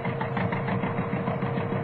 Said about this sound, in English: Right, pressure on saw. Into tree. Well, it seems to be biting all right.